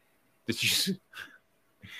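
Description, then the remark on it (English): A short series of nasal sniffs, made because of an itch: one longer, breathy snort followed by two quicker sniffs, hissy and moderately loud, with no talking. “Or were you just sniffing?”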